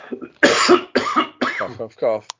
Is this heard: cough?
yes